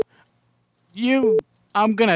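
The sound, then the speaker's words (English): A single short censor beep, a steady mid-pitched tone lasting a fraction of a second, cuts into a man's speech, with clicks at its start and end and more talking afterward. “I got to get a longer beep sound.”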